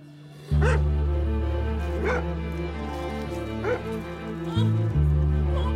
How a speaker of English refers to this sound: It seems maybe one of the guest's dog has gotten out. She's shouting for him to get inside, to get away from...